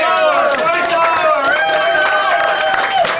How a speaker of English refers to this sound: Broadcasting from the original Green Turtle, 116th Street, in North Ocean City with Ravens News 44. Give yourselves a hand.